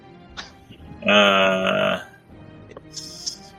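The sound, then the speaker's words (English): A person's voice imitates the roar of an owlbear in a tabletop role-playing game, the creature standing on its hind legs: one loud, rough, droning bellow lasting about a second, framed by quieter breathy noises and a short higher-pitched squeal afterward. “He stands on his hind legs and roars.”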